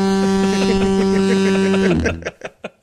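A single loud foghorn blast, a deep, buzzy sustained tone lasting about two seconds, cuts off abruptly and is followed by a few soft clicks and knocks.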